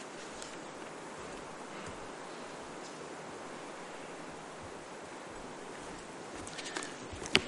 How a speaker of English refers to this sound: Gee, it's a heavy rain, isn't it? I hope you can all hear okay up the back as well.